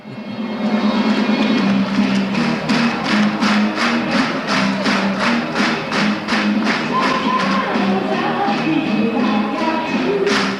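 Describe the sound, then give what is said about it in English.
A packed Northern Soul dance crowd at Wigan Casino in 1974, recorded by someone in the crowd on the floor: loud, steady, rhythmic claps or stomps on every beat over a muffled wash of music and crowd noise that never lets up. “We're listening to a recording someone made in the crowd at Wigan Casino in 1974.”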